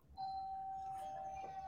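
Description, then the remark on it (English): A doorbell rings with a single steady electronic tone that starts abruptly and holds evenly for over a second, fairly clear against a quiet background with no talking. “Leads to doorbells. I was afraid that we would hear the noise upstairs.”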